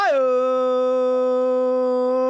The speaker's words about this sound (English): My dog is howling a lot. And what a perfect episode. I mean, I know my dog howls along a lot when we bring him here in the studio. He anticipates. He hears the windup. He starts getting his howl ready